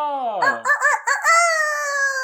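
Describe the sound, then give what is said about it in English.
A person's voice imitates a rooster crowing: one loud, drawn-out call that rises through a few wavering bursts and ends on a long sustained note, heard alone without talk. “can crow”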